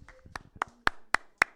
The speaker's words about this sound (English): And now let's get a big round of applause for dance for taking home first.